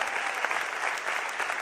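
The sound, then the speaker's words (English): A large group claps steadily for a worship team, producing a dense, continuous wash of applause that holds at a fairly even level throughout. “One more round of applause for our worship team.”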